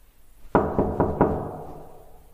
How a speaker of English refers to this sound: Oh, and this is the sound of me, leaving my apartment to go and knock on his door.